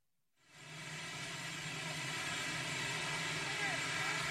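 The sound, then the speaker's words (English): The presidential helicopter Marine One roars loudly and steadily after President Trump gets off it, starting abruptly and holding without letup, a dense whine and rumble, as if it sits running on a landing pad. “he got off Marine One, walked away, and then took his mask off and saluted the helicopter.”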